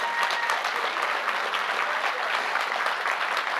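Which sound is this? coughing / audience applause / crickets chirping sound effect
audience applause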